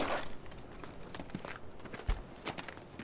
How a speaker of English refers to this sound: I heard footsteps as I moved into position.